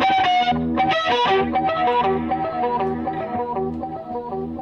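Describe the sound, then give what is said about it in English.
Electric guitar played through a stereo delay effect during a sound check for a live YouTube show, rich distorted chords and notes smearing into echoing repeats, fairly loud and steady before thinning slightly toward the end, with no one talking. “Check the delay.”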